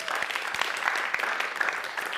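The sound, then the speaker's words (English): An audience claps steadily for a couple of seconds to mark the Juneteenth holiday, a dense, even patter of many hands at moderate volume with no voices rising above it. “And I want to say a special, and we can clap for that one as too.”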